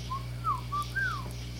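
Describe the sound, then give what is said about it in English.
A bird in the breeze gives four clear, whistled notes in a slow sequence, some rising and some falling, over a steady low background hum. No one speaks. “A gentle bird in the breeze.”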